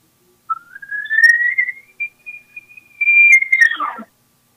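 A brand new elk call with a reed is blown, sliding from a short cow-call note up into a long, high, whistling bugle that holds steady, then breaks and drops sharply at the end. One continuous call, no voices.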